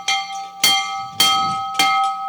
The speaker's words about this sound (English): But this right here is the rally bell.